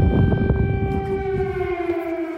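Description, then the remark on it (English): An air raid alarm siren in wartime Kyiv wails in a steady, sustained tone with strong harmonics, holding its pitch loudly over low rumbling background noise, with no one speaking. “At the same time, while we were there, there were several air raid alarms.”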